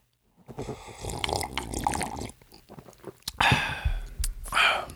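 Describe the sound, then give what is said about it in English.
Slurping and sipping of coffee, a few wet, airy pulls at the lips with small liquid gulps between them, fairly loud and with no talking. “Let's take a sip of this coffee.”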